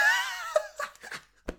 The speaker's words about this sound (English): That was a proper shriek.